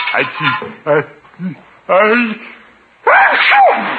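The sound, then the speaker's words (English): A loud sneeze bursts out near the end, a voiced, drawn-out 'ah-choo' after a few short vocal noises and breaths. “Bless you!”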